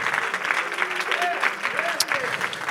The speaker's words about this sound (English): Oh, let's clap our hands once again unto the Lord, waiting on the Lord.